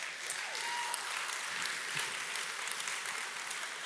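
A crowd claps steadily, a dense wash of many hands with no clear rhythm, holding at an even, moderate level for a few seconds without any voices standing out.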